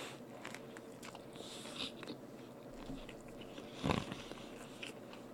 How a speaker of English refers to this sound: You're just going to listen to me chew. I'm sorry. That's just what this is going to be.